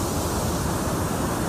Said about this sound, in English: Uh-oh, big wave coming in. Hang on. Here it comes.